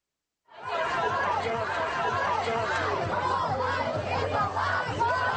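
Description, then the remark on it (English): A crowd gathered outside the Supreme Court in anticipation of the Dobbs decision on Roe versus Wade: many overlapping voices chatter and call out steadily, a dense, continuous murmur with scattered raised shouts and a low hum underneath, starting after a brief silence. “The Supreme Court, where every day crowds have been gathering in anticipation of the Dobbs decision.”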